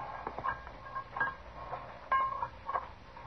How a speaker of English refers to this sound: Colonel's trying to pry him out of jail.